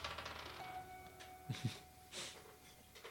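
A die is flung into a corner, knocking twice in quick succession, then giving a softer rattle as it settles. The sound is faint, with no one talking.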